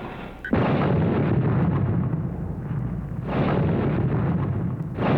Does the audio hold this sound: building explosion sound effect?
yes